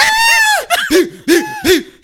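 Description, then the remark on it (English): A loud, high-pitched scream held for about half a second, followed by three shorter shrieking bursts in quick succession, with no talking. “Hey, the scream, because Shorty was talking mad shit.”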